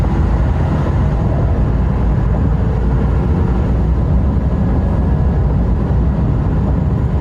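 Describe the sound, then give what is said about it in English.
A GM 6.6 heavy-duty gas pickup truck, a work-truck trim with a 6-speed transmission, accelerates from zero to fuel cutoff. Its big engine roars loudly and continuously for several seconds, a heavy rumble with no one talking over it. “So this one was a zero to fuel cutoff in the new 6.6 GM heavy-duty gasser.”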